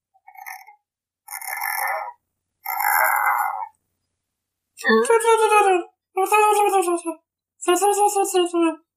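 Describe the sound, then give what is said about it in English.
A voice imitates a cricket opening a squeaky door: three short, raspy chirping bursts, then three longer, loud creaking squeals with wavering pitch, separated by brief pauses. “A cricket opening a squeaky door.”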